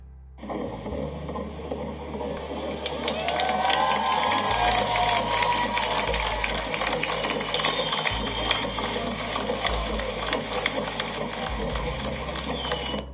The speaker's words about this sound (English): And what she did out in Times Square was she amplified her baby's heartbeat, because she was pregnant with a baby at that time. I want you to take a listen here. This is her baby's heartbeat, and it's being amplified.